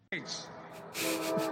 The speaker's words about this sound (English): And here comes the train that he tried to make sure didn't continue to run. No, that's the commuter.